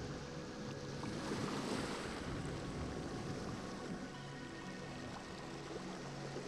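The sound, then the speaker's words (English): Steady ocean surf rolls and washes continuously, a broad rushing wash of waves with some wind noise, holding an even level throughout with no voices. “All the tension or frustrations of the day are floating away with the waves.”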